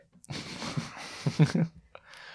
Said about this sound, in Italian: Ah, e ora anche la tossicina.